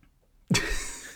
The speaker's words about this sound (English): Well, I didn't, yeah, well, anyway, I'm going to just have a sip of this water.